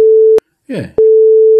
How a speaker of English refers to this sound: No, I mean, I'll beep that name out.